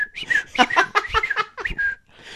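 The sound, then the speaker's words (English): A person whistles into the mic, imitating birdsong with quick chirps, warbling trills and rising and falling pips in a rapid, uneven string, ending on a sustained whistled note. “Even though it was just me on another Audacity file just whistling into the mic.”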